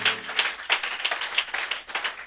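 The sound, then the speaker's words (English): An audience claps hands unto Jesus in a steady, rhythmic beat, roughly three claps per second, a crowded sound at moderate loudness with no voices on top. “Are you clapping your hands?”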